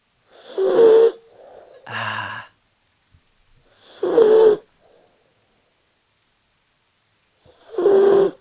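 A 12-pound fluffy white miniature poodle snores while sleeping in a house: four wheezy, whistling snorts with long quiet pauses between breaths, unevenly spaced, and no one talking.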